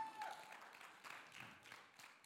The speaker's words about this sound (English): Man, give our worship team another round of applause.